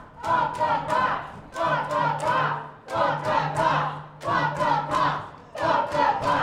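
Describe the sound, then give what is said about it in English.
A crowd of protesters at City Hall chants in loud, rhythmic bursts that repeat about every second and a half, with heavy pounding on the doors of City Hall, beaten to be let in, mixed into the chant, late in the morning. “As the morning approaches afternoon, if you listen closely, you can hear the sound of protesters beating on the doors of City Hall to be let in as they chant.”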